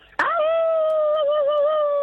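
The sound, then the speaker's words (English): A person lets out one long, loud howl in imitation of a dog, starting abruptly and holding a steady, slightly wavering pitch for about two seconds with nothing else around it. “Because everyone's out howling.”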